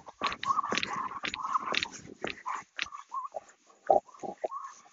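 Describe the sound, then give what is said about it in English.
A dog strains and chokes against its leash, letting out a rapid string of raspy, snorting gasps and wheezy grunts in uneven bursts, fairly loud with no talking. “You're choking yourself.”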